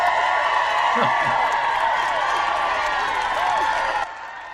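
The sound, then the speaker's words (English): A crowd cheers and applauds loudly and steadily, with whoops rising through the dense clapping for about four seconds before it cuts down to a quieter level. “That adoring crowd, that adoring flock of fans.”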